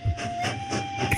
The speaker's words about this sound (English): Well, that's a miniature train they have running around the garden for the kids. That's nice. That's lovely. That's a nice touch.